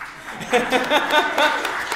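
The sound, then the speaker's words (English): Scattered audience clapping after a country song is sung, a dense patter of claps with voices and a bit of laughter mixed in throughout the short burst. “Don't clap that, my voice is terrible.”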